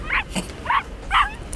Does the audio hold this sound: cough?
no